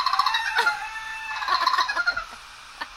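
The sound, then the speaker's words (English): Baby raccoons on a floor vocalizing in high, bird-like chirps and whining trills, two busy bursts of rapid squeaks followed by a quieter pause and one last short chirp. No one speaks. “Oh, that is a raccoon.”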